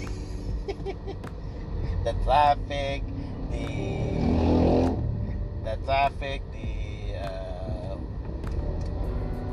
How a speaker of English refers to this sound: And as always, I'm on my way to work as of this recording. Here, I will show you the scenario again, even if you feel that this is so ordinary in the Filipino setting. It's traffic.